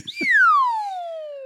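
A slide whistle plays one smooth descending glide, starting bright and high and sinking steadily lower over about a second, loud and alone after a short rustle at the start.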